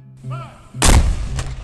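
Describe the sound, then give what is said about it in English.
A single cannon, placed in front of the stone facade of the Free State Hotel, is loaded and its fuse lit, then fires with a loud boom, its deep rumble rolling out and fading over the next second. A faint low hum precedes the blast. “The first cannon was loaded. The fuse was lit.”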